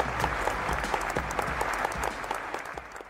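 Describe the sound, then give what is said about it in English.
An audience applauds storyteller Jay Akunzo as he is introduced, many hands clapping in a dense, continuous patter that holds at a fairly loud level before easing off slightly at the end. “So warm round of applause for Mr. Jay Akunzo.”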